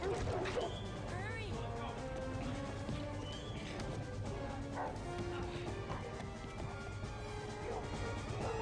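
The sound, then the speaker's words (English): Vicious dogs bark and snarl in a frantic attack, with sharp crashes and thuds mixed into a loud, dense wall of continuous background sound. “God, these dogs are vicious.”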